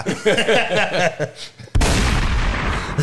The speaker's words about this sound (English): There we go. There go the gunshots. I thought it was going to be a round of applause or something.